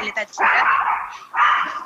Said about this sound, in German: ach der Hund